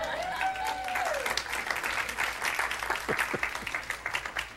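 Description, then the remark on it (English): A crowd applauds a man's wife, a dense wash of many hands clapping at an even level for several seconds, with a brief high whistle-like tone rising and falling at the start. “And I got to say, she really deserves a round of applause.”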